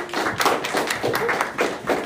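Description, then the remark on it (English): Thin, scattered audience applause welcoming Pastor Scott: a small number of hands clapping in an uneven, sparse patter of sharp claps at moderate volume, with no one speaking. “So if y'all give him a round warm of applause, that would be great.”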